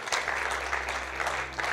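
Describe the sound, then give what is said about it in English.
A church audience claps together for Jesus in a dense, steady burst of applause, many hands overlapping into a continuous crackling wash over a low constant hum. “Come on, give Jesus a clap today.”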